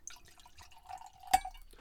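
Wine trickles and drips softly as a 2019 Nouveau is poured from a bottle into a glass, with a brief bright clink near the end; no one speaks.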